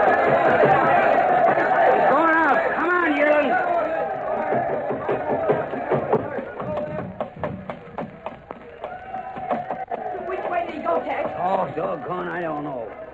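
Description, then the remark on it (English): A loud, dense crowd roars and chatters around a wrestling ring, many voices overlapping and shouting, with a few sharp thumps and taps cutting through the din midway. “At that moment, however, Boom Boom, hidden in the ringside crowd and apparently angered by the failure of his plan, started shooting at the master of the sea.”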